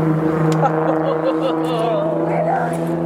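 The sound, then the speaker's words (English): A steady engine drone from passing cars hums continuously with a low rumble, while faint voices murmur underneath; no distinct pass-by swell stands out. “I think probably the sound of these cars is scaring.”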